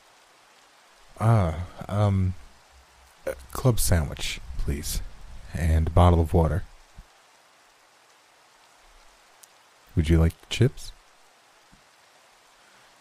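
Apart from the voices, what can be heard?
rain falling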